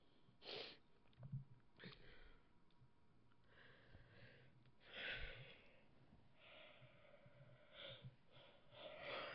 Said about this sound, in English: Pretty late here, that's why I'm yawning.